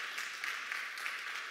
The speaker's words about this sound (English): Y'all should clap.